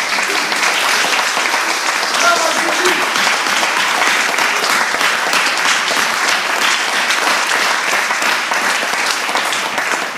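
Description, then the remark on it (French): Loud, sustained applause for Jesus from a large crowd at a religious gathering fills the whole recording, a dense wash of many hands clapping at once without letting up. “Retonnerre d'applaudissements.”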